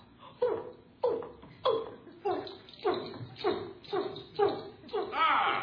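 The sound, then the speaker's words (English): A person makes an orangutan impression, letting out a steady series of about eight loud, rising ape-like hoots in quick rhythm, building toward the end. “Make a noise like an orangutan.”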